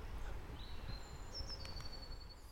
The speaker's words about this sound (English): And most of the stuff around is common. It's just waking up. And I can hear in the background robins, long-tailed tits, blue tits.